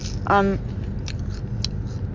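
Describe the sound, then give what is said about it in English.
Crunchy snack chewing of Flamin' Hot Cheetos, eaten in a car: a short tonal squeak, then a few sharp, crackly crunches spaced apart over a steady low rumble, with no talking. “This might be like the loudest, most annoying food I've eaten on the shod, because it's like crunchy and also the heat.”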